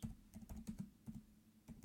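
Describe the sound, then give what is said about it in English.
Rapid clicking keystrokes on a computer keyboard as someone types "X23 comic clipping", a quick irregular run of taps, with a low steady hum underneath and no voices. “I'm typing X23 comic clipping.”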